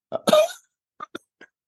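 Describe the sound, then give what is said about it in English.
A person getting over a cough lets out a harsh cough, followed by a few short, quieter throat-clearing hacks trailing off at uneven intervals. “I'm getting over a cough.”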